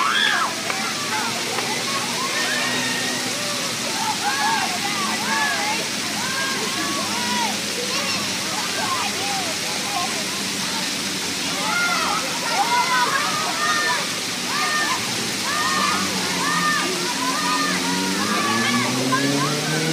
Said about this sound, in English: And on this 80-degree day, dozens of kids from around the city have donned their bathing suits and brought their squeals of delight as the cool water refreshes and energizes.